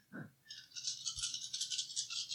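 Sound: dice rattling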